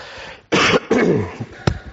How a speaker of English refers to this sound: Oh dear, sorry. I've had a cold this week and I've almost died. And so I just want you to understand that the coughs and the splutters are me just about remaining alive for this talk.